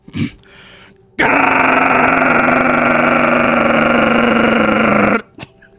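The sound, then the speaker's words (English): A voice imitates a big-rig semi-truck's Jake engine brake: a loud, gravelly, sustained rattling drone held for about four seconds, then cut off abruptly, preceded by a brief quieter vocal sound. “That's just a big rig Jake breaking.”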